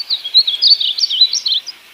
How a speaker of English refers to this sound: What does that feel like when you realize it? That's the bird that you've been looking for.